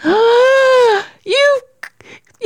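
A girl screams loudly in a long, high, wavering shriek lasting about a second, then lets out a shorter second cry, followed by a few faint breathy sounds.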